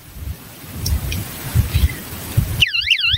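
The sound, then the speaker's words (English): Low rumbling handling noise gives way abruptly to the shrill electronic emergency siren of a Fighter Flare flashlight, its high pitch warbling rapidly up and down in repeated sweeps until the end. “The Fighter Flare flashlight also comes with an emergency siren and compass, rope cutter, glass breaker, built-in power pack, and has solar charging capabilities, which I always use.”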